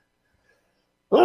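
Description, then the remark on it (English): After near silence, a sudden, loud sneeze bursts out right at the end, sharp and abrupt. “Bless you.”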